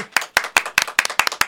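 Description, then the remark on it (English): A short round of applause made of steady, rhythmic hand claps, about eight sharp bright claps in quick succession, fairly loud and with no talking over them. “Of applause for that, you guys.”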